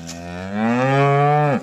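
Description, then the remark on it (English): A single long, loud cow moo, swelling in strength and holding steady for over a second before cutting off abruptly, with no one speaking. “I didn't even know cows before I came here.”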